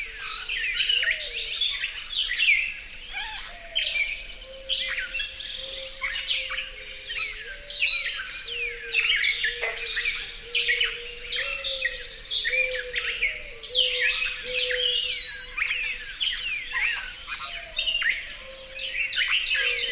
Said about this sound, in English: set themselves up at dawn in a shrub swamp in the Pocasset National Wildlife Refuge in North Carolina and recorded these solos of mourning doves and gray catbirds. Carolina Wren and a northern cardinal provide the backup vocals.